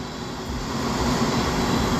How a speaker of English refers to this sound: And the noise you're hearing is from our company, the UPS airplanes. Our last plane is supposed to be at 5:42. And it came kind of late, so it's 6:03. And as a matter of fact, our last plane is arriving right now.